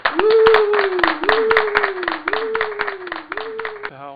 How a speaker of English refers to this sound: So if you're shooting, I don't know, family event, let's say at the table or whatever, just start recording sound, and you will be able to sync that up. Get out your clapper. Yeah. Get grandma to clap.